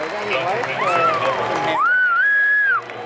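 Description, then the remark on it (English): A loud, piercing finger whistle rings out, held steadily for about a second with a slight rise at the end, following a noisy stretch of overlapping voices. “Oh, you can do the finger whistle.”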